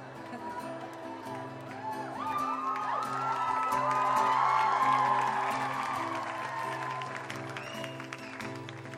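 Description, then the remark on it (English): A large crowd cheers and yells continuously as a performer tries to start a song, people yelling that they love the performer, with scattered whoops and shouts swelling to a loud peak midway before easing slightly, mixed with some clapping. “It's so hard to start a song when everyone just keeps yelling that they love you.”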